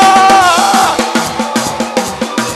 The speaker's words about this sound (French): Acclamons le Seigneur et des cris de joie.